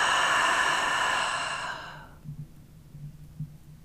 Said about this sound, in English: This last deep, deep breath, breathe in deep into your belly and notice your capacity to expand your body, taking more air, your capacity to expand, to become, and out the mouth.